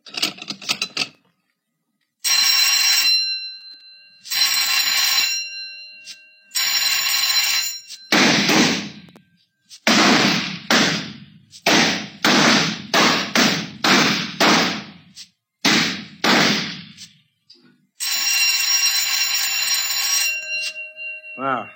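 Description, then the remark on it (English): At a shooting range, several sustained electronic bell tones sound one after another to start the first half of rapid fire, with firing on the third bell, followed by a quick, loud volley of sharp gunshots in rapid succession, then another long bell tone closes the sequence. “Fire on third bell.”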